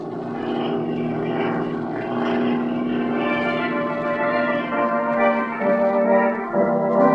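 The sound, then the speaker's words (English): A propeller plane's engine drones steadily for several seconds, a rich harmonic hum that rises and shifts slightly as the floatplane lands on a lake and taxis across the water. No one speaks. “Land in the lake and taxi up as close as possible to the place that fellow came down.”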